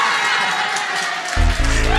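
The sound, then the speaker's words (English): A table of Carlton supporters in a live audience cheers loudly and continuously, a dense wash of shouts and whoops, with one sustained voice rising out of the noise near the end. “You've made a Carlton table very happy. And that's how you win the crowd over at these shows.”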